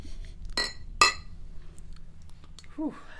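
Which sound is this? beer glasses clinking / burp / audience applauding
beer glasses clinking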